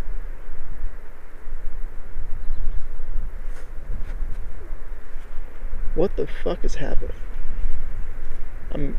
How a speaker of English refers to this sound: Excuse any interference here. That's wind. So I'm recording this outside.